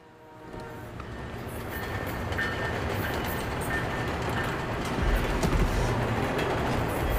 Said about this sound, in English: We got lucky with that train there, and it really, I think it helps. You know, those commuters on that train going to Washington, and they're just going by, and those meetings like that are going on all the time.